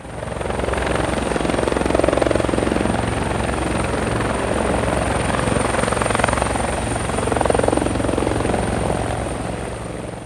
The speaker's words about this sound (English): the group makes their escape in the helicopter